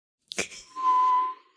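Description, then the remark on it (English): A sharp click, then a steady, breathy whistle held for about half a second, a voice imitating a tea kettle whistling in reverse by sucking air in. Fairly loud, with no talking. “A reverse tea kettle whistle.”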